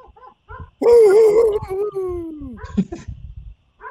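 A dog lets out a loud, wavering howl that slides downward and trails into whimpers, with a few soft whines before and after.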